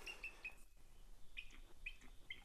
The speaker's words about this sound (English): There, did you hear that? Bald eagle perched way up in a tall snag. Bald eagle nest up there.